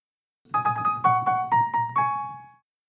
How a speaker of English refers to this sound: I bought a keyboard. Oh, okay. So I played the most Arabian song I know.